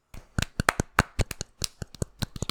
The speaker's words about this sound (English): I'm doing pretty decent, and I don't know why I'm giving myself a golf clap, but I will anyway, which might be not the best thing to do, but I will do that anyway